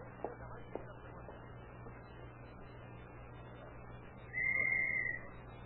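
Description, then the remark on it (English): A single sharp whistle blast, blown as a signal, about a second long, rings out near the end over a steady low hum and faint background noise. “He went right through that glass door where you blew that whistle.”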